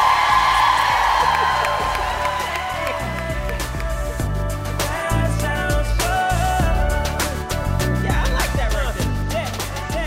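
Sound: audience applause and cheering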